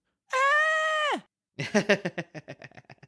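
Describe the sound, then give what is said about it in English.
A voice lets out an imitation of Ruby Rod's shrill, panicked scream, held for about a second before its pitch drops off, then breaks into a run of quick, pulsing yelps that gradually fade. “Like, I know they're trying to scare them, but I'd be freaking out big time. I'd be screaming.”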